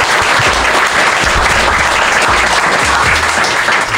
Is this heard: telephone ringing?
no